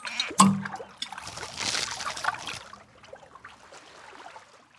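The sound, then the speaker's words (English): Shallow ocean waves wash in over the bare feet of someone sitting at the water's edge: a quick splash, then a swelling, hissing rush of water that peaks and recedes into soft trickles and dribbles, no voices. “You sit down and feel the water on your feet. You hear birds and see the waves.”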